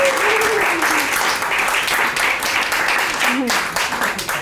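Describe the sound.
An audience applauds in a steady, dense round of clapping that holds loud for several seconds, with faint voices and a few cheers mixed into the wash of hands.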